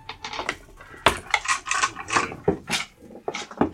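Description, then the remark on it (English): Several dice are rolled for initiative, rattling and clattering across a hard tabletop in a quick, uneven series of sharp clicks and tumbles, some overlapping, fairly loud, with no voices. “Let's all roll initiative.”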